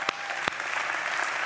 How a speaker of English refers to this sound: And many of you that are clapping, it's because you've been through it.